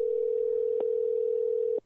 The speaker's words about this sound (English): We're giving Mikey a phone call right now. It is ringing at least, right?